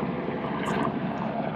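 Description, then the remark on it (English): A helicopter drones overhead, a steady, loud mechanical rumble and whir with broad, low-heavy noise that holds level throughout, with no one speaking. “I'm just going to wait until this chopper passes.”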